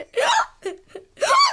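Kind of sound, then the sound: human body sound, hiccup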